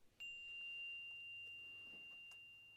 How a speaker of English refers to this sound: I'm going to invite the chime to sing, and then we'll set an intention for our practice today.